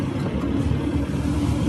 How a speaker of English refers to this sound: And there's a long line of the cars coming from Ukraine to Romania.